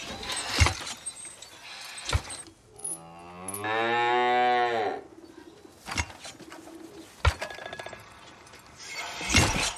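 A cow lets out one long, loud moo lasting a couple of seconds, with bird cooing and a few sharp knocks and thumps scattered around it.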